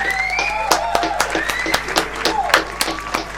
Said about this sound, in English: I think it's only right that we give him a round of applause, firstly.